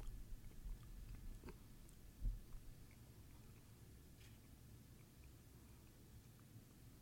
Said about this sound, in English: He's chewing on the thread.